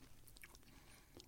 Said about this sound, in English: Chewing sounds. You can really taste the beechwood smoke.